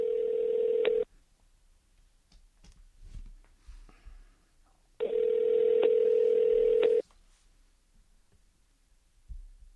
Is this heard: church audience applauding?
no